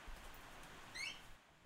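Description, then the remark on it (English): A dog gives a single sharp bark right at the end, preceded by a faint, brief high-pitched whine over an otherwise quiet, hushed background. “Dog, what did I just say?”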